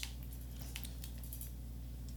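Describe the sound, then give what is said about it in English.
Soft, scattered clicks of fingers pressing keyboard keys, irregular and fairly faint, over a steady low hum with no talking. “Because when I touched them keys, yeah.”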